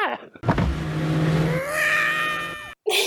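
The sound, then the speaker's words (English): A car roars off, its engine note climbing steadily in pitch as it accelerates, with a brief high squeal at the start and an abrupt cut near the end. “But they speed off and I love hearing Marge's little scream.”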